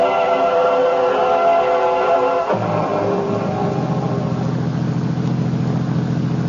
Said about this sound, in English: I was still fuming, even after the limousine the Stokeleys had sent to pick me up at Dulles Airport was purring along the road west toward Winchester.